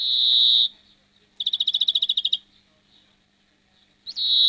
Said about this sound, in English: Greenfinch. A bird that's been declining actually within Ireland, so it's nice to hear. It's a while since I've actually heard that song of the greenfinch. The numbers have been going down, which is sad to hear.